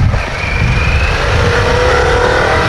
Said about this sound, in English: Yeah, for a 150 horsepower bike, I don't know why you'd want any more power. This delivers it so nicely as well.